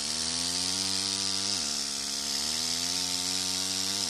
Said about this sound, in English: But the biggest difference was the tools. The clink-clink of a hand chisel was gone, replaced by the gnawing sound of pneumatic chisels chewing the limestone membrane.